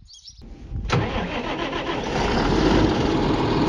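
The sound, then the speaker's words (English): After a brief click and near-silence, a tractor engine cranks and starts before drilling Larkspur, then settles into a loud, steady running rumble that grows slightly stronger toward the end. “Just getting up into the tractor”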